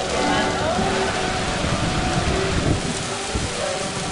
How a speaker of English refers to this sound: The music can't compete with the downpour, but there is refuge in a classroom.